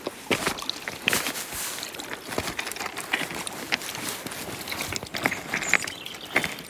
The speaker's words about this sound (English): I'm cautiously paddling to bring you some sea noise, because we don't get that often. We're at Stackpool Quay. Oh, I hope you can hear how tranquil it is. It's at sunset. There's just some distant voices.